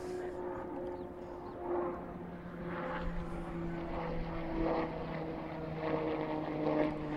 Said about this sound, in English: Incredibly loud aeroplane going over.